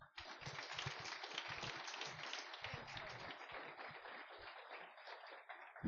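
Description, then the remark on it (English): An audience applauds steadily for about six seconds as an associate professor is introduced, a dense wash of many hands clapping at once that stays full and fairly loud, easing only slightly toward the end. “So please, a big round of applause to Associate Professor”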